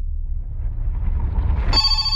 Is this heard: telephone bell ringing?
yes